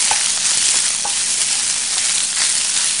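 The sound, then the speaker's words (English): Steady, loud sizzling of fried rice in a hot oiled pan as vegetables are added, a dense crackling hiss that holds constant throughout with a few sharper pops, with no one talking. “What you want to hear, that sizzle.”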